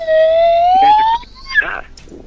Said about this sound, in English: That's just the slide whistle, because we're wacky morning DJs.